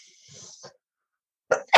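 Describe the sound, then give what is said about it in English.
A soft, breathy intake of air, then a brief silence before a sudden, loud sneeze bursts out, followed by the start of another sharp sound. “Bless you.”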